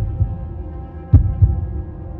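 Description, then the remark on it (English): A person's own heart beats furiously, thumping low and muffled, with a faint beat early on and then a stronger double thud, beneath a dull steady hum and no voices. “The only sound I heard now was the thumping of my own heart beating furiously.”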